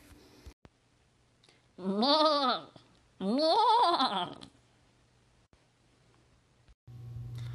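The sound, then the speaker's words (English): A goat bleats twice in quick succession, each call loud, quavering and drawn out for about a second, with a short pause between them and quiet background otherwise; it introduces the "Inspiration Goat" segment. “Good one, Inspiration Goat.”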